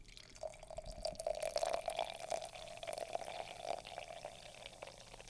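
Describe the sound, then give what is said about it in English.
LaCroix sparkling water is poured gently and steadily over berries, a continuous gurgle with a bright fizzing crackle on top, lasting several seconds with no talking. “Then you're going to add the LaCroix on top of the berries, ever so gently. Nice pour.”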